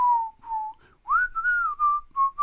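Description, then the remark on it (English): A person whistles a short melodic tune, clear pure notes gliding between pitches in a lilting phrase with brief pauses, no talking over it. It is a catchy whistling number, one of the songs from a film. “We hit it off with just an insanely catchy whistling number.”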